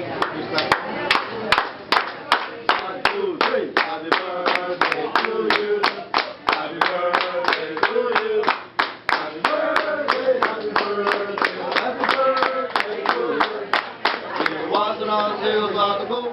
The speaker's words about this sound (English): You know, they'd have their wait staff with out the there clapping, doing right? the clapping song. Yeah. Exactly. And that's Benihana. If they get rid of that birthday clapping song, I am not going to be happy.